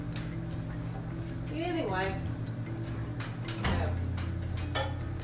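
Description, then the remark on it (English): Someone rummages among glassware and kitchen items, looking for a glass tea jar: a scattering of sharp clinks and knocks, with a brief squeak of glass partway through, over a low steady hum. “Anyway, I found my tea jar that I've been looking for.”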